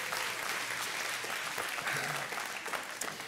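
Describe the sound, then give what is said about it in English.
A church audience breaks into sustained applause as a hand clap of praise to God at a morning service, many hands clapping in a dense, steady wash of noise that holds at an even loudness throughout, with a few faint voices mixed in. “Somebody needs to give God a hand clap of praise this morning.”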